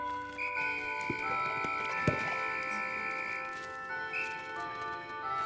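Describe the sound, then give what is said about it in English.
Hooflike clip-clop footsteps of a horse-like video game creature trotting past small bulb-like orb enemies in an open-world game, a handful of sharp, unevenly spaced taps over a steady layer of sustained tones and ambient game music, with no one talking. “They think that they can fight us, but they're very wrong, because we can just trot past them.”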